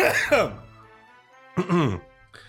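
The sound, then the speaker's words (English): A person coughs and clears their throat in two rough, voiced bursts separated by a short pause, followed by a brief hoarse catch at the end. “Oh, I got a real cough. Hang on.”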